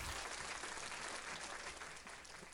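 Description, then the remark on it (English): A burst of applause from a crowd, dense steady clapping that holds for a couple of seconds and tapers slightly at the end, sounding like a canned sound effect. “I do have an applause.”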